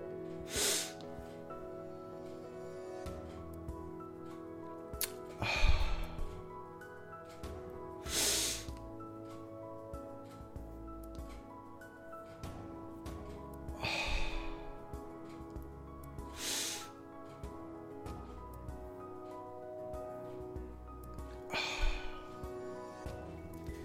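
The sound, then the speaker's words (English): Slow, deliberate breaths in a controlled breathing exercise, drawn in and pushed out, each a soft airy rush spaced several seconds apart, repeated about six times over a quiet, sustained musical backdrop with no talking. “And now I've taken a very controlled breath, which limits the amount of oxygen that I let into my body and also slows down the cycle of breathing.”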